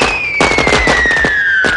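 A rapid series of loud explosions, set off by a parrot operating a toy car and lighting a match, crackles and pops like fireworks, bursts tumbling over one another while a thin high whistle slowly slides downward underneath.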